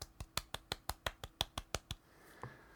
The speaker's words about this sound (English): I am glad I played it. I would definitely golf clap it, which I will do right now.